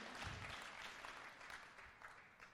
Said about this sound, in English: Yeah, you can clap for that. Thank you, one person in the corner. I see you.